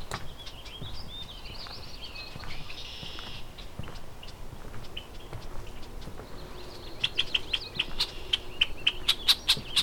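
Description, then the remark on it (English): Red-winged blackbird alarm calls from an unhappy bird flying around the recordist's head in a cattail marsh: sharp, repeated chips coming faster and louder toward the end, with softer trills and a low outdoor rumble in the background. “Unhappy red-winged blackbird. Kind of flying around my head a bit.”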